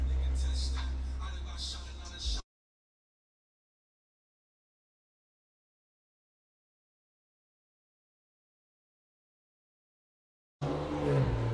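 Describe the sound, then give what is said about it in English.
Loud, bass-heavy music with vocals blares from the radio of a passing car at 9 o'clock in the morning for a couple of seconds. It then cuts abruptly to total silence before briefly booming back in at the very end. “What would make you drive around with a car radio loud at this time of the morning?”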